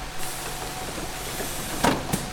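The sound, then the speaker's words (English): A bus comes to a halt at a bus stop amid steady traffic rumble, with two short, sharp bursts of air-brake hiss near the end. No one speaks. “Something in my soul told me to go after her, but as I took my first step in her direction, the bus screeched to a halt in front of me.”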